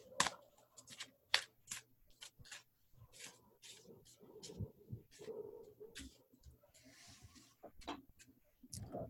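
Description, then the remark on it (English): A deck of cards being shuffled, a series of crisp, papery snaps and riffles in an uneven rhythm, with low murmuring underneath. “I'm going to start shuffling. You tell me when to stop.”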